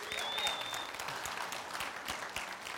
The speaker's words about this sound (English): Yep, give her a hand. You can cheer her on.